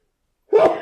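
A single sneeze bursts out after a brief silence, fairly loud, with a voiced, breathy rush that ends abruptly.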